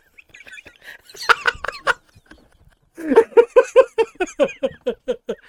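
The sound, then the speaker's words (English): Birds scattering and calling: a short flurry of sharp squawks, a brief pause, then a loud, rapid run of about a dozen clucking cries that gradually tapers off. “That's what I do to the birds.”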